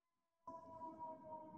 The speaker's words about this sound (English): And that's an ambulance. Yep. Yeah, or fire engine.